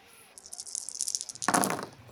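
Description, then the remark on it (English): Dice rolled for a check in a tabletop game run by a GM rattle and clatter in a cup for about a second, then tumble out onto a hard surface in a louder burst of clicking that quickly settles, landing on 16. No one speaks. “You can go ahead and roll for it.”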